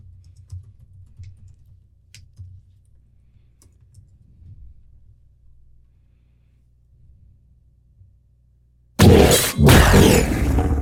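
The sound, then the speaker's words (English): Soft, muffled keyboard typing, a quick irregular patter of low, dull key presses, then a sudden loud, harsh burst of noise cuts in near the end. “It's like the opposite of the mechanical keyboard I have.”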